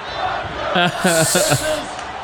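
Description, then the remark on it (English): A large crowd chants "Let's Go Brandon" in unison at an event where Obama is present, several loud rhythmic syllables rising over a steady roar of background crowd noise, then fading back into the general din. “They continue the Let's Go Brandon chant.”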